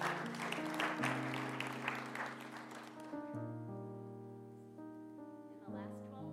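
An audience claps in a dense, steady burst for about three seconds for the first person coming up to share a thankful message, then the applause fades out, leaving sustained organ-like chords that play on alone.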